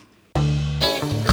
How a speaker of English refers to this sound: Oh, let me just find the vibra slap, because I played that. I'm just going to make this extra loud.